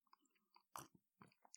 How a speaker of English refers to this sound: A sip of my chamomile tea right quick before I get to speaking to y'all.